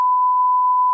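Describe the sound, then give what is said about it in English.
A single steady, loud electronic beep at one pitch, lasting about a second, the classic censor bleep used to cover a word, with no talking around it. “I can't wait to beep all that out so no one knows what the fuck we're talking about.”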